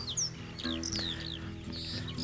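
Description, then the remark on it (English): A recorded tape loop of birds: quick, bright downward-sweeping tweets, several overlapping calls repeating across the moment, set against a steady low hum. “Thing is, if you listen really closely to the birds, bird chirping, I'm pretty convinced it's also the exact same tape loop of birds”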